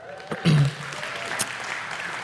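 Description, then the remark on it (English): A church audience at Foothills Church claps in a dense, steady wash of applause after the announcement of a new baby boy, with a brief louder swell and a short vocal whoop early on before it settles. “No one needs to clap at that one.”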